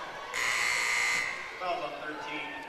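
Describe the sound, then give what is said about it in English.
A referee's whistle at a basketball game sounds one long, shrill blast lasting about a second as a foul is called on Doniphan Trumbull, loud over a murmur of crowd noise and voices that continue after it stops. “and a whistle and a foul is going to be called here on Doniphan Trumbull.”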